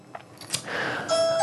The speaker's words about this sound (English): All right, my doorbell is ringing. I have to go get that.